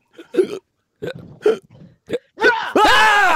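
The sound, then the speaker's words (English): Several short, sharp vocal hiccup imitations by people pretending to have hiccups, in quick succession and fairly loud, followed by a sudden loud shout-like burst that sustains to the end. “if we pretend to have hiccups now, can you just jump in at some stage and scare us, see if it works?”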